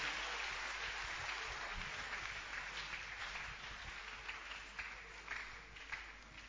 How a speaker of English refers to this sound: Clap your hands for the Lord. Oh, give the Lord a wonderful clap offering.